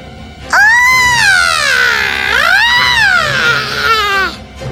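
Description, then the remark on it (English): Loud, piercing screaming rings out as a palm is placed on the surface of water in a vessel, holding for about four seconds, its pitch sliding down, swelling up again and falling, continuous with no talking. “He put his palm on the surface of the water, and at once a loud screaming rang in his ears.”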